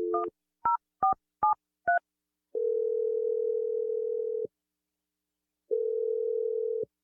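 A telephone number being dialed to call someone's boyfriend: five quick two-tone touch-tone beeps in a row, followed by two long steady ringing tones separated by a pause. No voices are heard.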